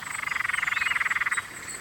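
A frog in a cool, damp, leafy gully calls in a rapid, pulsing trill of about twenty even beats, clear, then stops abruptly, leaving a faint background hiss with a higher chirp behind.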